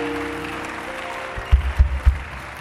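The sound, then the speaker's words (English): A crowd claps together as a clap offering to Jesus, in a dense, steady wash of applause, with a few heavy low thumps landing near the end. “If you can give a clap offering to Jesus, something will be changing in your life.”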